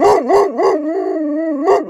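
A large dog howls loudly, a few quick rising-and-falling yowls leading into a long, wavering howl, then more short yowls. No one speaks.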